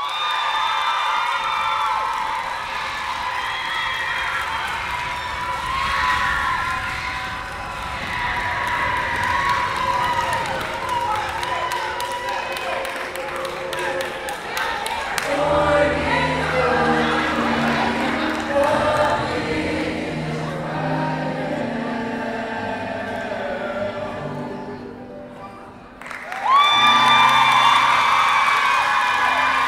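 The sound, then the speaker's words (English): An audience cheers and whoops loudly and continuously while a choir holds a long sustained note underneath, as the performer heads back to the stage from the audience floor. The roar dips briefly near the end, then surges back even louder. “With his choir still holding that note, he heads back to the stage and the crowd is loving it.”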